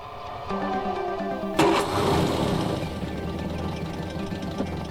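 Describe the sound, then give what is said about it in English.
The engine of an old, beat-up 1960s Ford Anglia car cranks and catches with a sudden burst, then settles into a steady, rumbling idle, with no voices, on a quiet stretch of road in the Danish countryside on a hot day. “So what he does is he gets in his car, which is a kind of beat-up old 1960s Ford Anglia. Gets to about 60 kilometres an hour.”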